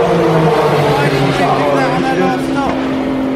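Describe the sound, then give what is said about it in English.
A Porsche race car, heading out of the pits after having all four tyres changed, roars past at speed: a loud, steady engine drone with a slight pitch sweep near the end. A voice can be heard faintly beneath the engine. “And out it goes, and you'll hear it pass us now.”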